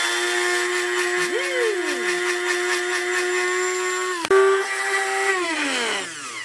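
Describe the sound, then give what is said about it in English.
A small electric spice grinder buzzes and is shaken while powdering pine needles, with a steady, high motor whine and gritty rattling, its pitch briefly dipping early on, then a sharp knock before the motor winds down at the end. “So this is a great little tool for, I basically want to make powder out of these pine needles. So just going to buzz it and shake it.”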